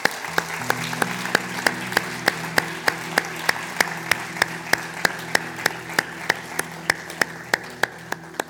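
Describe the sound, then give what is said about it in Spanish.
An audience claps together for the Lord in a steady, even rhythm, sharp beats repeating about three times a second, over sustained low keyboard chords that hold underneath without any voices. “Denle un fuerte aplauso al Señor en este día.”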